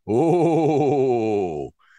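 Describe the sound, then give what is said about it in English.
A person voices a long, wavering ghostly moan, a sustained low "ooh" with a wobbling pitch lasting well over a second before cutting off, then a faint short sound after. “And I don't know what your best spooky sound effect. Ooh.”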